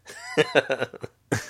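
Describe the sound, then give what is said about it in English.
A person clears their throat in a quick run of rough bursts, pauses briefly, then gives one more harsh rasp. No speech is heard. “Oh, no, I'm just clearing my throat.”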